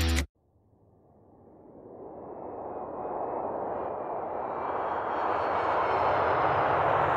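An old DC-9 jet airplane lands at Ciudad del Carmen, a beach town on Mexico's Yucatan Peninsula, in April 2006: its engines roar in alone, swelling steadily louder over several seconds with a thin high whine riding above the broad rumble.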